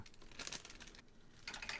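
A crinkly bag of food rustles and crackles in two bursts as its contents are dumped out, fairly quiet, with a short lull between the bursts and no voices.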